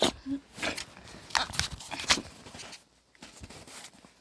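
An old female pet dog sneezes several times in quick succession, each a short, sharp, hissing burst of air with brief pauses between, fairly faint overall with soft shuffling in the background.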